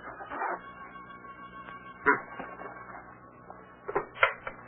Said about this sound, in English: A Geiger counter. It's used to detect and measure the presence of radioactivity in the atmosphere.